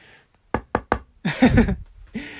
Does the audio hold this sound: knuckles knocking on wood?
yes